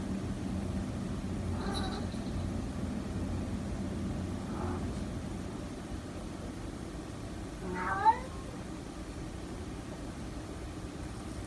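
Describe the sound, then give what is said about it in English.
A cat meows three times at spaced intervals, the first two faint, the last louder and clearer, over a steady low rumble like an engine or aircraft. “The cat meows three times.”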